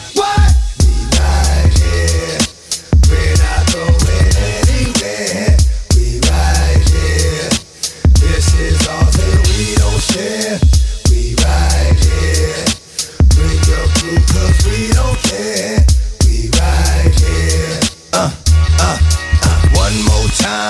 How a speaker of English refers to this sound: Here's your requested music right now.